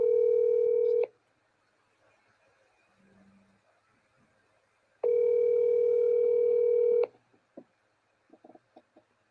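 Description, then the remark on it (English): A phone line ringback tone sounds two loud, steady electronic rings separated by a few seconds of near silence, followed by a few faint clicks at the end. “I'm going to call him right now.”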